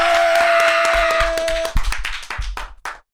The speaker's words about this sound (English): And I want to add this: me being a threesome connoisseur. Clap it up for that.